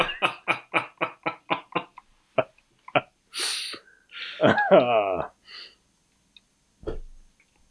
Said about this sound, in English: Yes, sorry. I was stifling a cough.